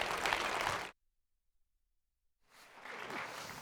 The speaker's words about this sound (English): Let's give him a round of applause as he comes, all right?